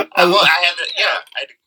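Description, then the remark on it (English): A man clears his throat in a drawn-out, gravelly way, a voiced rasp lasting over a second that breaks into a couple of shorter rough bursts before trailing off. “I had to clear my throat.”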